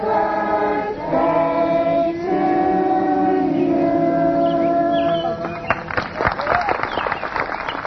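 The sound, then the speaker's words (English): A large outdoor crowd of several thousand pilgrims, gathered in a rural meadow between two hills amid woods and pine trees for a birthday celebration of the Virgin Mary, fills the scene with steady, overlapping voices and sustained tones. Scattered clapping and cheering swell up toward the end. Busy and fairly loud. “Between two hills, there is a meadow, and in that meadow a crowd had been gathering since early morning. A birthday celebration was underway.”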